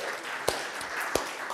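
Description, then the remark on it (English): Audience applause at a church service, given for a preacher's first sermon: a steady, dense wash of clapping with a few sharper individual claps popping out above it, sustained at moderate volume without voices. “So let's just give Ben a round of applause.”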